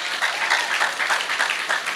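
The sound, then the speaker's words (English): A church audience applauds steadily to welcome everybody at a service, a dense wash of many hands clapping at once with no pauses, bright and sustained at an even loudness throughout. “So come on, let's welcome everybody.”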